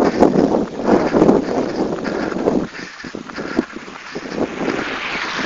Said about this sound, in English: Got a car coming behind me.